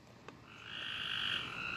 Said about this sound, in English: All the creatures that be out at night. Right now, to be honest, I think those are bullfrogs, locusts, crickets.